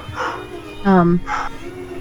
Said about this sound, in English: The barking?